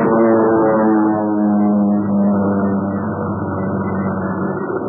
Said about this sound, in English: Now, that isn't Jude, but I wish it were. Well, the plane's coming in again, Pat. Let's get down here and stop this thing.